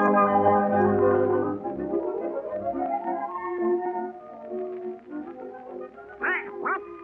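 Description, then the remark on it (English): A nasal, squawking voice of Donald Duck quacking in rapid bursts with sharp rising and falling honks near the end, as he is asked to dance, layered over steady, fairly loud background music. “What a dance with a duck? Certainly not.”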